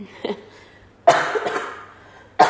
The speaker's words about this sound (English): Excuse me. Only one cough, though.